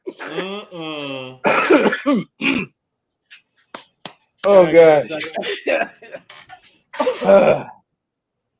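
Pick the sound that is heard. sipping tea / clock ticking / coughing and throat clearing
coughing and throat clearing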